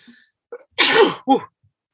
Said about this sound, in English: Mm-hmm. I had to sneeze. Excuse me.